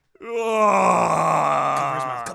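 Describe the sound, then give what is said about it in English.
A single loud, drawn-out scream from a man acting out a character's brother screaming, strained and groaning in tone, held steadily for about two seconds before cutting off, with no talking around it. “Your brother screams. Do the scream.”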